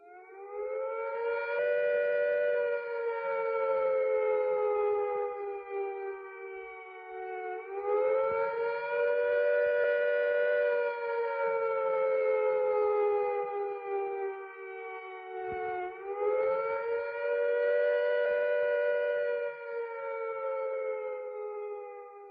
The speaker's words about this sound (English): If we are attacked by nuclear weapons, these are the warning sounds you must recognize. First, the attack warning. If an attack is expected, the sirens will sound a rising and falling note like this.